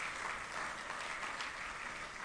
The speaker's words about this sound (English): Can we applaud those folks this morning? We thank God for them.